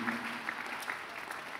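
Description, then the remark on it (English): An audience at a church sermon claps their hands in a dense, continuous patter of many overlapping claps, fairly soft and steady throughout with no voices rising above it. “Oh, you're not clap your hands well.”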